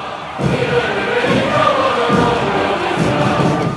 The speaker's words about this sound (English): At the military parade celebrating 70 years of Communist Party rule, crowds cheered, tanks rolled, and Xi Jinping smiled.